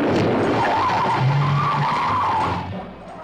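A car's tires screech loudly in a sustained skid over engine roar during an emergency turn, lasting a few seconds before fading as the vehicle turns sharply.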